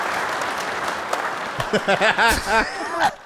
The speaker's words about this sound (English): Wait till the clapping stops.